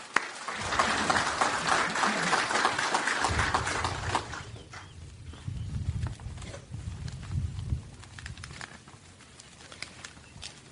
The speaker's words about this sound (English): I'd like to give a round of applause to all that helped put this thing together, the VFW, the Ladies Auxiliary, the Boy Scouts, JROTC, just a fantastic job putting this thing together. So I'd like to give them a round of applause, please.